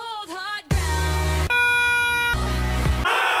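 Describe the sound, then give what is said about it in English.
A series of clips of a duck-call noise used in songs: loud, nasal, buzzy honks held as long sustained tones, several in a row at shifting pitches, after a brief wavering melodic snippet. “This is a series of clips of people using the duck noise in songs.”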